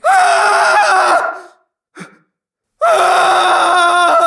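A man screams twice, each cry loud, sustained and strained, separated by a brief gasping breath in a short pause. No speech accompanies the screams.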